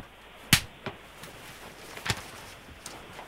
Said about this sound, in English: A slap has been performed. Am I allowed to ask, is it mainly fingers or is it full palm? Great question. For that, I actually was just finger contact. I can still feel it stinging.